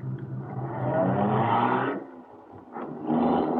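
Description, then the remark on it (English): A car engine revs loudly, a sustained throaty roar that eases off briefly, then surges again as the vehicle pulls away. “Get in this car.”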